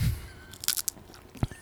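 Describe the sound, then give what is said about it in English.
Crisp crunching bites of food, a quick cluster of bright, crackly chews followed by a single low thud-like chomp, with no talking. “As we eat.”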